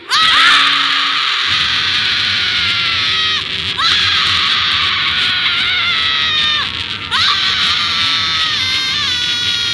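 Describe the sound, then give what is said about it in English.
A crowd of people yells and screams together on a count of three as a collective release, loud and sustained, in three long overlapping waves with brief dips between them as voices catch their breath. “So today, on the count of three, we are doing a collective release. So on the count of three, feel free to let out a breath, a yell, a word, anything you would like.”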